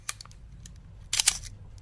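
A film SLR camera fitted with a 50 mm f/1.8 lens fires its shutter: a single crisp click, then after a pause a louder, rattling cluster of sharp mechanical clicks, with no voices over a faint low hum.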